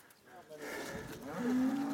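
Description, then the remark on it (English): A cow lets out a long, low moo that swells in loudness and holds a steady droning pitch toward the end, heard outdoors well out of the city during a cycling climb, with no talking. “Better cows than sheep.”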